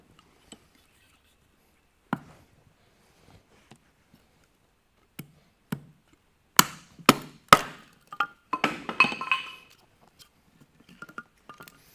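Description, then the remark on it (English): Sharp wooden knocks and cracks, scattered at first, then three loud blows in a row, followed by a dense burst of crackling and splintering as the wood splits apart. “Just about splits itself.”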